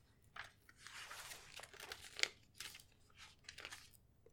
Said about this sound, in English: Turning pages.